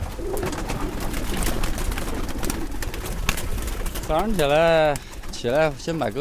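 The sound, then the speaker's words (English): Pigeons coo and warble over a busy, rustling clatter as their keeper shoos them out of a small cage on the tin roof of his brick home in the morning, releasing them to fly; near the end come two loud, wavering calls. “When I wake up every morning, the first thing I do is release my pigeons.”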